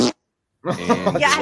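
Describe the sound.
A voice makes a buzzy, sputtering raspberry imitating how fart bubble gum would sound, lasting under a second, loud after a short pause.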